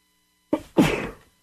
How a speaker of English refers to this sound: excuse me, beloved, I need to sneeze, I think. Hold on.